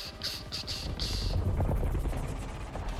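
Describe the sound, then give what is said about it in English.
Chaotic battle noise from a video game trailer, with rapid bursts of gunfire and a heavy, rumbling helicopter drone as helicopters collide and skid off the sides of buildings, dense and loud throughout, with sharp high-pitched crackles early on. “So while we're watching this trailer here of helicopters colliding and skidding off the sides of buildings and helicopter about to mow down 100 people,”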